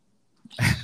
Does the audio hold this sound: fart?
no